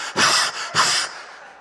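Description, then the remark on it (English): A voice imitates heavy panting while going up stairs, two loud, breathy huffs in quick succession, trailing off into a softer exhale. “And you walk away as you're panting, up, down, going up the stairs.”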